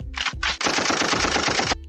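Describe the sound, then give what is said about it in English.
A gunshot sound effect: two sharp gunshots ring out, followed by a loud, rapid burst of automatic gunfire that rattles steadily for about a second before cutting off. No voices are heard. “Manze, ni noma, manze, juu ya noma, manze, gunshots to the boy child.”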